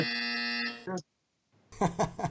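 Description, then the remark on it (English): A loud, harsh buzzer signaling that time is up blares for nearly a second, then a brief lower tone. After a moment of silence, people start talking. “Abide by the buzzer.”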